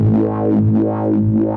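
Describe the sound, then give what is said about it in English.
A sustained bass synth tone whose filter sweeps smoothly up and down in a steady sine-wave rhythm, opening and closing about twice. It's loud and plays alone. “Here's sine wave.”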